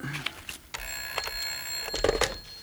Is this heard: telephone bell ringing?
yes